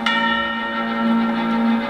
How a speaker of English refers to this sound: And as he's walking, you see a close-up on his feet, and with each step, you get a toll of the bell.